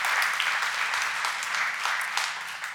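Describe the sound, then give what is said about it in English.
A church audience claps for God together after a prayer in a dense, steady burst of applause that holds at an even loudness for about three seconds, with no voices heard over it. “Can we give God a great clap?”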